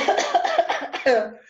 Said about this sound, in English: Yes, you know what, and I promise I will not cough inside of it. But just let me cough and clear my throat before I start doing it.